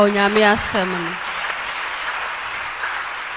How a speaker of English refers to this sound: Clap for the word of God.